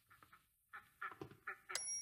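Several ducks quack in short, nasal bursts, five or six calls spaced irregularly over a couple of seconds, moderately loud, ending with a brief bright ringing tone.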